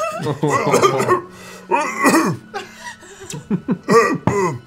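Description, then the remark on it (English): A person coughs in a series of harsh, throaty bursts, fairly loud, with voiced, choked sounds between them and a cluster of quicker coughs near the end. “I'll walk away, coughing, trying not to cry.”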